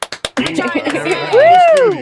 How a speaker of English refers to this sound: Well, I still clapped. Okay. I showed my appreciation.